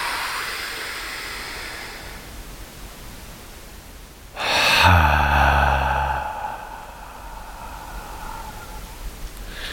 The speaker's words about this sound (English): I love this air I'm breathing right now. Feels so good, filling up my lungs and my stomach.